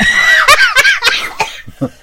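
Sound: coughing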